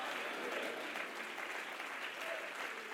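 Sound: audience clapping and shouting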